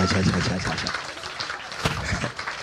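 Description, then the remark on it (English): A crowd claps steadily together for Jesus, a dense burst of applause from many hands, with voices mixed in beneath it. “Give a clap unto Jesus.”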